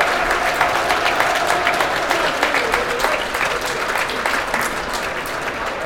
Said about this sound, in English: I don't know what this is. Applause. So I'm guessing things are okay.